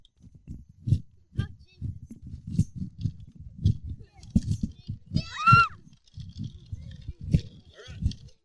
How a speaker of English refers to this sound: For those that are listening online, I'm crunching the Milo cereal into my measure.